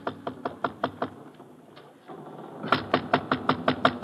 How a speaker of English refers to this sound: I hurry aboard the ship, and after showing the person my credentials, we go below to Vuko's cabin. I wait a short distance away while he knocks on the door.